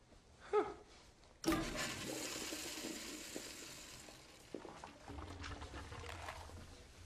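A toilet flushes with a sudden loud whoosh of rushing water that churns steadily, then gradually thins and quiets as the tank refills. A brief small clink comes just before.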